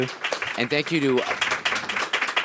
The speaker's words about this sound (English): And once again, I want to thank our panel. I'd like our audience to please give our panel a big round of applause.